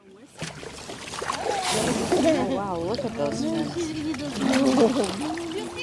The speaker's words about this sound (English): Every year, 13 million people go out onto the water to watch whales and dolphins. Just watch them. Those are a few of those people. That's a boat full of whale watchers in Baja. And chances are they paid good money to do this.